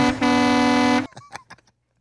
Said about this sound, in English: If it was a good episode, honk your horn right now on the interstate. Damn, did you hear that? People are. Everyone honks.